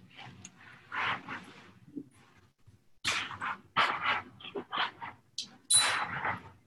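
A dog barks repeatedly in two bursts: a few sharp barks, a short pause, then a rapid, insistent run of barks with no talking.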